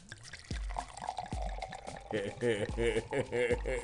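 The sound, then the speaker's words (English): Wine glugs and splashes as a man pours it into a glass with the microphone right above the glass, with a burst of low gurgles and rising liquid tones, while voices murmur partway through. “He pours the wine while the microphone is right above the glass.”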